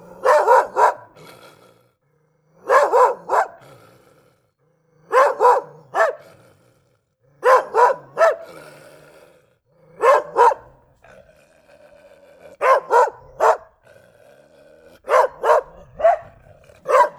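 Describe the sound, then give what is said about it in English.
A dog barks loudly in quick pairs and triplets, the bursts repeating every couple of seconds with brief quiet gaps between them and no voices. “Pardon me while I do a puppy check to make sure the dog isn't destroying anything.”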